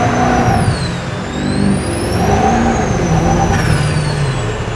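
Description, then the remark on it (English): A powerful 800-horsepower dirt-drag truck engine roars and revs hard as it launches, loud, with a steady mechanical drone and a high whine sweeping up and down throughout. “But we'll give you a quick launch here.”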